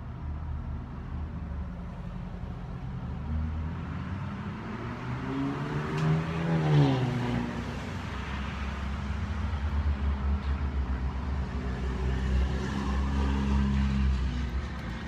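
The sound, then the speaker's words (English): A heavy, loud truck rumbles past, its engine growling louder toward the middle as it passes, with a falling whine, then fading into steady road noise. “I've got a loud truck about to go by.”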